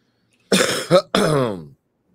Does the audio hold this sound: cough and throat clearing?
yes